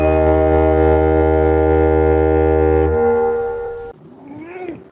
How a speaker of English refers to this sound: There's the siren, signaling our return.